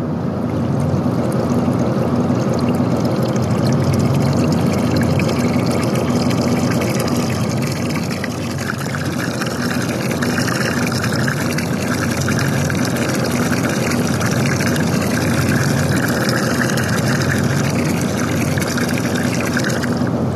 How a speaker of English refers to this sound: And then I'm going to take this bucket of water, which I'm pouring water into the bucket.